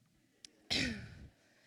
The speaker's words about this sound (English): It's a cough attack. Hold on.